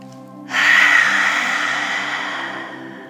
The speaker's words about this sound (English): And last one, as loud and forceful as you can, lion's breath, deep breath in.